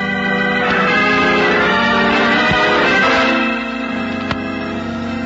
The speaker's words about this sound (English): The bell.